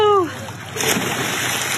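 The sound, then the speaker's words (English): A short voiced cry opens, then a girl wearing a puddle jumper falls forward, puts her face in the water and kicks her legs out behind, sending up a steady, fairly loud stretch of churning splashes that carries on to the end. “you're going to see her fall forward and put her face in the water and kick her legs out behind”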